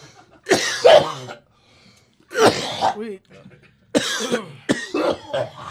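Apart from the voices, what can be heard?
coughing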